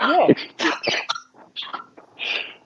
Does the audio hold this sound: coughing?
yes